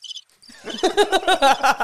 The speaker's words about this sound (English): Just crickets.